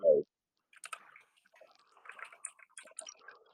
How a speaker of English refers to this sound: Sorry for the loud clicking. The keyboard is very loud.